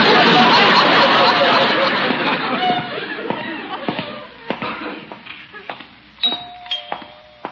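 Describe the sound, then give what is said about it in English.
A doorbell at the front door chimes near the end. Its ringing tones rise out of a fading wash of crowd chatter and murmuring voices. “Wonder who's at the front door.”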